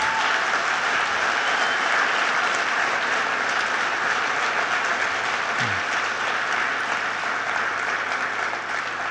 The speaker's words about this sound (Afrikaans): Ek wil vanoggend ons met die Here celebrate, is dit ok? Ok, en ek wil net, kom ons klap net hande vir die Here.